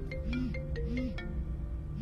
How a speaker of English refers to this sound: What the hell? It was my phone that was ringing.